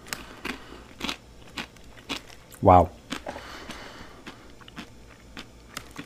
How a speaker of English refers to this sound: That is so tasty. Oh my gosh. No, I can't stop eating it. This is like the spicy chicken flavored corn pops.